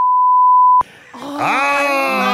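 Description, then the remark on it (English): A loud, steady censor beep holds a single high pitch for nearly a second, then cuts off abruptly into a drawn-out, rising vocal groan. “And you could beep this if we get our timing right.”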